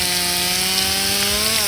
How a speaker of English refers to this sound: Here I come. And with that, she shoves the chainsaw into my crotch and turns my genitals into a fine puree that I know will be A-OK in an hour or so.